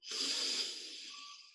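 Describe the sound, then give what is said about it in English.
A single deep breath in during a guided meditation, an airy hiss that swells quickly and then slowly fades over about a second and a half, with no talking. “Again, deep breath in.”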